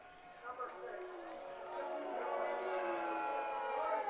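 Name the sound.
stadium crowd booing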